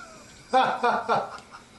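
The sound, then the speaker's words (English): A cat yowls while trying to get out through a window, making three drawn-out, wavering cries in quick succession, loud against a quiet background. “That cat's just like, that's amazing, man.”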